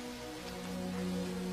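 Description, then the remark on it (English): Steady rain hisses continuously beneath a sustained low droning tone, the patter dense and even with no voices, lasting only a moment. “I wish the rain would stop just once. It can't rain all the time.”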